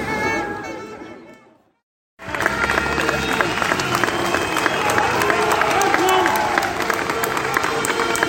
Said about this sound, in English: The Hartlepool team bus is just arriving. As you can hear, they're being greeted by the fans who are lining the streets here.